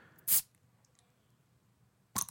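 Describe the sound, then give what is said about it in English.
A beer glass is set down hard on a table, giving a sharp, bright clack, with a second similar knock a couple of seconds later and near quiet between, with no voices. “Oh, and he landed on the table for that nice ringing sound.”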